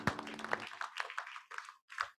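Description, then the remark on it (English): A group of people claps their hands for the Lord Jesus, with a dense, uneven patter of sharp claps that fades off after a couple of seconds. A brief low hum sits underneath at the start. “Clap for the Lord Jesus. Clap, clap. Everybody put your hands together for the Lord.”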